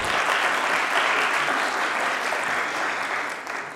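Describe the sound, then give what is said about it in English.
An audience applauds panel guests after a discussion round, a dense wash of many hands forming a continuous, fairly loud patter that holds throughout and thins slightly at the very end. No one speaks. “Yeah, please give them applause for this round.”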